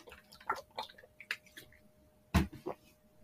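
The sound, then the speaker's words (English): Wet mouth and swallowing noises, then a sudden loud sputter and a smaller follow-up as someone chokes on a sip of water that would not go down the throat. No one speaks. “Oh Christ, choked on a thing of water there.”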